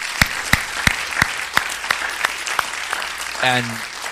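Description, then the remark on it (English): Audience hand clapping for the people who have served Wednesday night dinners for the past eight months, in a steady, even rhythm, about eleven sharp claps that gradually soften, followed by a brief voiced sound near the end. “Can we give them a hand clap tonight?”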